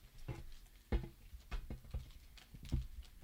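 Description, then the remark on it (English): Small plastic clicks snapping in an irregular series as an action figure's ratcheted joints are moved through their positions, fairly quiet, one a bit sharper than the rest. “Yeah, you can kind of hear the clicking into... Oh, you can really hear it on that one.”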